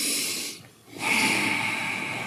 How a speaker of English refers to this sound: I'm putting into play some of the stuff I've learned at the Joshua Tree Spirituality Center. You're doing the deep breathing. Have you done the left nostril breathing? That's supposed to help.